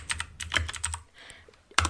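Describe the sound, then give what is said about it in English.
Rapid clacking of mechanical keyboard keys, a flurry of crisp keystrokes in an irregular rhythm with a brief pause before a final loud clack. “Well, not for the podcast, but because it makes me feel more productive when I use a mechanical keyboard.”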